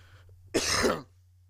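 A single short, harsh cough bursts out, lasting about half a second, over a low steady hum, with no talking.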